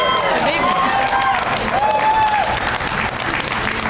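audience applause and cheering

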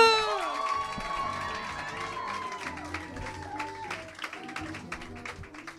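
audience clapping and cheering

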